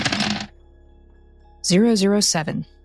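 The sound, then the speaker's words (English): A brief burst of dice rattling and clattering as they are rolled for an occult roll, fairly loud, then a pause before a voice speaks or hums for about a second. “We'll see what the dice give me.”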